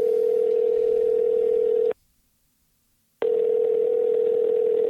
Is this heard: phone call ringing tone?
yes